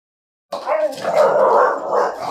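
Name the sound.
dog barking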